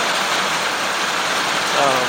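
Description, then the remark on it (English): Steady rain starts up again and pours down in a dense, continuous hiss, fairly loud throughout, with a faint voice briefly audible near the end. “And the rain's starting up again, getting louder again.”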